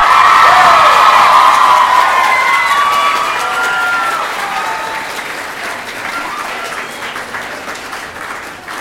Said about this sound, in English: Next up, come on up, Sue. One more round of applause for Sue. She's done so much this week.